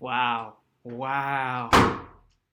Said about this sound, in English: Wow. Okay, I didn't actually leave. I just slammed the door.